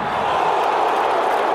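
A stadium crowd of Italy (Azzurri) supporters at a 2020 Cup football match applauds and cheers in the 60th minute, with Italy trailing 2-0. The dense, steady roar holds at an even, loud level throughout, with no single voices or distinct claps standing out.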